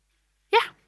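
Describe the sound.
A voice imitates a rat with one brief, high squeaky yelp that trails off into a breathy puff, heard alone after silence, as performers playing rats creep off a stage.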